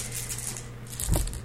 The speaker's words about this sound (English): So at this point, we will now roll our dice pools and see who wins.